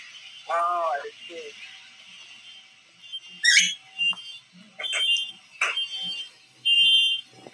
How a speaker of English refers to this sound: Oh, come on. A car alarm is going off right now. Great. Great.